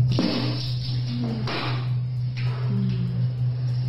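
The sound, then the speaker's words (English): Wet, messy splattering of a woman's diarrhea in a handicap stall of a gas station bathroom, a few sputtering bursts spaced irregularly over a steady low electrical hum, muffled. “Listen to that. It kind of sounds like a water balloon exploding.”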